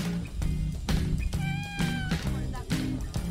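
A single clear cat meow, drawn out with a rising then falling pitch, sounds midway through over a busy rhythmic musical background with regular percussive hits; the cat is on Cat Island.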